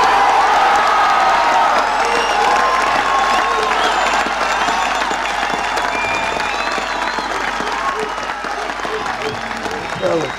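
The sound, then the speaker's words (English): Sustained, loud applause from a large crowd after a political speech, dense and steady throughout, with scattered cheers and shouts rising above the clapping. “And, it's a big line after this applause.”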